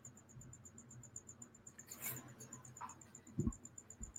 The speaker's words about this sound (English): It's something like crickets or something. Yeah. It's like crickets in the background. It's probably you because you're outside.